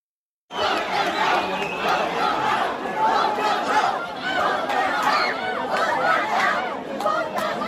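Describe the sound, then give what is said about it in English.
A large crowd of parents and protesters shouts and jeers continuously at a local gay man who spoke, a dense, rowdy roar of many voices booing and yelling at once, loud and sustained after a brief silent start. “a local gay man who accused the parents and protesters, again, 50% Muslim, roughly, accused them of hating gay people, and they booed him and jeered him.”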